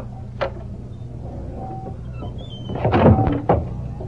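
A door creaks open with a light knock, then after a short pause it swings shut with a louder cluster of thuds and a final bump, with no voices, as people go out the door into the dawn.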